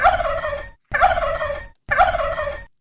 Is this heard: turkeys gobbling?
yes